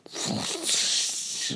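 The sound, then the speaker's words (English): A voice makes a rushing, hissy whoosh for about a second and a half, mimicking the toilet-flush sound in a song, with a breathy, gurgling rumble underneath that fades out at the end. “Yes, there is one part where it's like someone actually flushing a toilet. Oh, like there's that sound in the song? Yeah, it goes like...”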